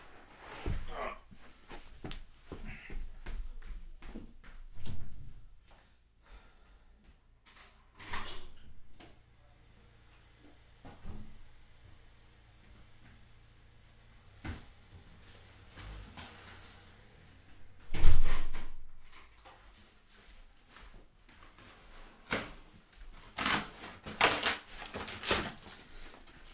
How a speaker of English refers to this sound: Someone's at my door. Hang on, guys.